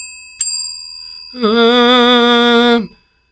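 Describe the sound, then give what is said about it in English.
A service bell is struck once with a sharp ding, its thin metallic tone ringing on quietly while a steady, sustained hummed note joins in for over a second. “And only the boss of the show gets to use bell for service.”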